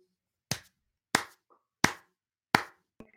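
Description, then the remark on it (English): Four slow, evenly spaced hand claps ring out crisp with no talking, followed by a fainter fifth clap at the very end. “Are those your butt cheeks slapping together, or are you clapping?”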